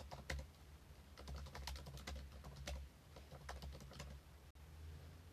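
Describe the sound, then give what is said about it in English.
Rapid, irregular clicking of keys on a computer keyboard as someone types a Google search, fairly clear, with a brief pause near the end and a low steady hum underneath. “I'm gonna Google it. I would assume the answer is yes. And everyone enjoy this keyboard ASMR.”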